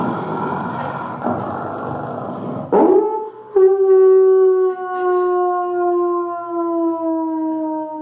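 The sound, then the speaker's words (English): A voice imitates a long, siren-like howl: after a few seconds of rough, breathy noise, a loud sustained tone slowly glides downward, holding steady for several seconds with no other talk. “or an ambulance in the distance?”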